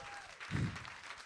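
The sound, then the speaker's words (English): A crowd applauds at a comedy show, a dense wash of many hands clapping at once, swelling briefly in the middle before holding steady. No one speaks over it. “Stop clapping.”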